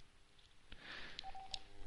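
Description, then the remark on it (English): A quick run of telephone keypad touch tones as someone dials a number from a different phone, several short beeps pressed in fairly rapid succession, soft with a faint background hiss and no talking. “I'm going to call from a different phone here.”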